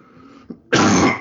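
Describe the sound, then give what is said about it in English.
A quiet moment with a faint throat sound, then one loud, harsh cough bursts out and continues to the end, with no talking. “Fuck that cough.”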